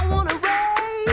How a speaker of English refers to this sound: Then the first percussive element is the hand claps. And I remember the process of us putting that together because we didn't just want it to be straight claps.